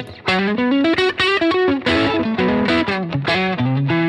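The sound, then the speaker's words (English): An overdriven electric guitar plays a lead line through an amp's lead channel, set a little crunchy with an overdrive gain boost and smoother than the OTS. A quick run of loud, sustained notes with a thick, harmonically rich distorted tone, rising and falling in pitch without any talking. “But what's great about it is there's a overdrive gain boost for that channel.”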